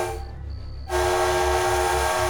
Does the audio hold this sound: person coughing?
no